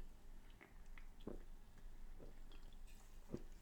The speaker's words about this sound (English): While I have a sip of this Coke and give you some horrible audio for 10 seconds.